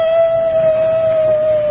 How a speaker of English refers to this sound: It sounds like one of our dogs. It is. It's Sultan, my sister's dog.